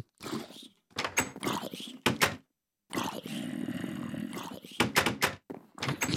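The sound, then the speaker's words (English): Repeated doors in a video game open and close in quick succession, each with a wooden thunk or creak, separated by short gaps, with a longer rumbling stretch in the middle; fairly loud, with no talking. “Too many doors.”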